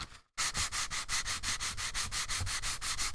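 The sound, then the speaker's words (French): Kraft paper from the company Mange Tout rubbed in quick, steady back-and-forth strokes, about three per second, giving a dry, loud rasping hiss after a brief silent start, with no voices. “Premièrement, du papier craft de la compagnie Mange Tout. On va premièrement entendre le son.”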